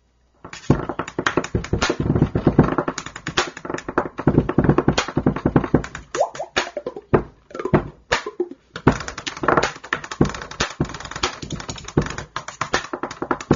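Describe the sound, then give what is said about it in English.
A fast, intricate rhythm tapped out by a man sitting at a desk in a viral video, using two ink pens, the side of his mouth and coffee cups, with crisp clicks and hollow knocks in a steady, busy groove that runs without pause and no voices. “It's a guy that's sitting at a desk, and he's tapping out this incredible music rhythm with everyday things like pens, coffee cups, a harmonica, just all sorts of different things.”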